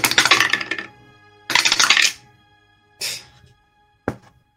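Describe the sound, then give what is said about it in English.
Dice rattle and clatter across a hard table: two longer rolling bursts, a shorter tumble, then one sharp final clack, with quiet gaps between and no voices. The roll comes up 13. “I fucking hate my dice right now. That's a 13.”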